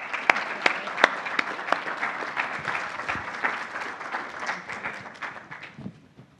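A crowd applauds steadily, many hands clapping in a dense, bright patter with a few sharper claps standing out, then the applause thins and fades toward the end.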